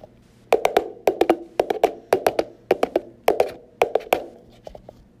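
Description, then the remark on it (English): Two plastic cups banged against each other as a sound effect of a horse clopping: hollow plastic knocks clatter in a steady galloping rhythm, pairs and triplets of sharp taps repeating like hooves. No voices, just the bright, resonant clacks. “To create this sound effect, I took two plastic cups and banged them against each other at a tempo similar to that of a horse's.”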